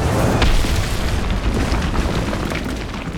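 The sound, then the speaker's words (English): A heavy crashing impact as a sphinx lands in a rocky valley, followed by a sustained, loud rumble of tumbling rocks from the rock slide it causes, thick with deep low-end roar and scattered crackling debris that eases off slightly toward the end. “She landed with such anger and force that it caused a rock slide.”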